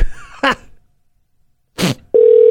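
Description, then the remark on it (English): A telephone ringback tone on an outgoing call to the Crow's Nest in Washington begins as a steady, mid-pitched electronic tone, preceded by two brief noisy bursts and a stretch of silence. No one speaks. “Answer the phone! I'll leave a message.”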